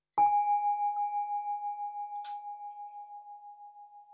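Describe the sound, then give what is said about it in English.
A single meditation bell is struck once and rings on, its clear sustained tone slowly fading with a gentle wavering pulse. No one speaks. “And without awareness, we listen to the bell.”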